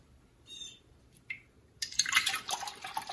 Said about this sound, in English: All right, into a bowl, you're going to add some buttermilk.